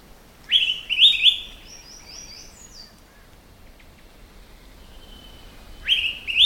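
An Araripe manakin sings short, bright, whistled phrases, a burst of two or three notes near the start and another at the end, with quiet stretches of faint background between.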